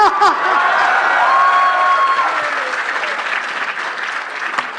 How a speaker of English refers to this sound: Can we clap? Please clap.